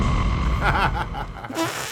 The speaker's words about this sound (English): a new scary sound effect called bzzz. Wow. Kind of sounds like a fart.